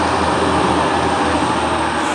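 A steady, loud roar of a train rolling past, a continuous rumbling wash of mechanical noise with no voices over it.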